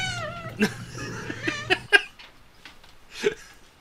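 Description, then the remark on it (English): An alien creature scream: a warbling, high-pitched wail over a low hum, followed by sharp clicks and short, strangled screeches, fairly loud with no talking. “The Scream of E.T. The Extra-Terrestrial”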